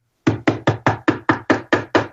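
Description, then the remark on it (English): Someone knocks on a door nine times in a quick, even rhythm, each rap loud and hollow, with no voices in between. “Open the bloody door. Open the bloody door. Hello, how can I help you?”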